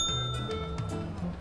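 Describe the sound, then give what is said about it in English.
Coins clink together as stolen cash is counted, a few irregular, light metallic taps with a brief ringing tail, fairly quiet over a low background hum. “Mind if I count it a little lifted cash while we do?”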